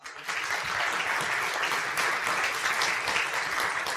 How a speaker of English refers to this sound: Give a hand to our sound crew, please.